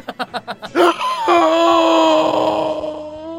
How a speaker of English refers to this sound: In the distance, you hear Ozymandias gasp.